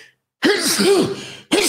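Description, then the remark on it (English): Two loud sneezes in quick succession: a long, breathy first burst followed almost immediately by the start of a second, with no talking. “Double sneeze.”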